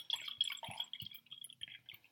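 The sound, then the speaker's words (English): Orange-tinted rosé wine pours into a glass, a quiet, steady trickle with soft gurgles and a couple of brief splashy glugs, no voices. “Pours nicely.”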